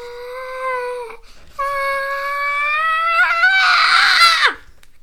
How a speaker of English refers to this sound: Did they scream? They let it rip.